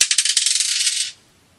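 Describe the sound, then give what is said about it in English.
Dice number 1 is thrown: it clatters and rolls across a hard surface in a quick burst of bright, rapid clicks lasting about a second, then abruptly goes still; fairly loud, with no voices. “Throw the dice number 1.”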